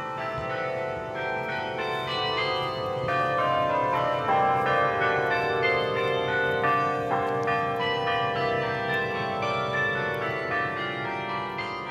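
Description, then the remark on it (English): Carillon bells, rung by a real person, ring out a continuous melody, many pitched bells overlapping with long, shimmering resonance. The chiming stays steady and fairly loud throughout, with no voices present. “It's kind of nice to know there's a real person up there, ringing out the bells to say, hey, the pandemic's still on, but you can come outside.”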